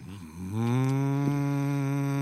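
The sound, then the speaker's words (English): A voice imitates a neighbourhood lawnmower on a Saturday, starting with a short low sputter, then rising into a loud, steady, buzzing drone that holds one pitch for about two seconds. “And that's actually a very good imitation of a lawnmower.”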